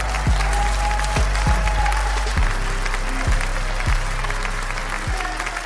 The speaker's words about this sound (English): So back, another round of applause for Illinois.